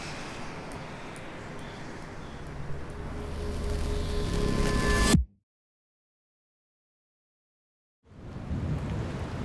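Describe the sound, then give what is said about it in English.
Heavy rain roars steadily while thunder rumbles low beneath it, swelling louder until the storm sound cuts off abruptly into a few seconds of silence, then the downpour resumes. A Category 5 storm, Owen, on an island, waited out at the Solberg Community Center. “The night of Owen, we wait out the storm at the Solberg Community Center.”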